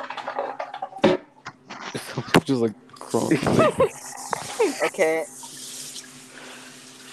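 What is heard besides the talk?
toilet flushing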